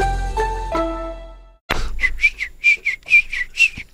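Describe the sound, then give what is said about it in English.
A few sustained musical notes ring out, then after a brief pause a bright whistled melody plays in quick, repeated phrases, sitting lightly beneath a backing track. “You know, had they added that little whistle underneath the track?”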